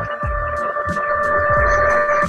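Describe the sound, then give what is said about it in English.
A printer recalibrating: a steady mechanical whine runs throughout, broken by a quick series of rhythmic clicks and soft low thumps about three times a second. “Sometimes my printer has a life of its own and suddenly does something.”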